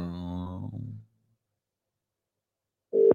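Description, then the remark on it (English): A telephone ringing tone heard down a call line: one buzzy ring burst, a long pause of silence, then the next ring starting. It's fairly clear, with no one talking. “Shringing.”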